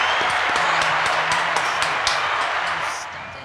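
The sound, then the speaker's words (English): A burst of applause from a small group, hands clapping in a dense, steady patter before tapering off toward the end. “Damn, clap it up, man.”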